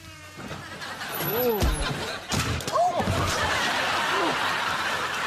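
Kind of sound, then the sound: household object, door being slammed shut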